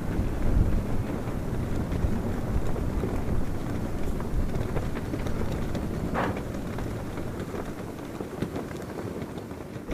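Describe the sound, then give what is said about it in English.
Prayer flags flapping in a strong, steady wind, the gusts roaring with faint irregular flutters and snaps running through the whole stretch, no voices. “They were always furiously flapping in the wind.”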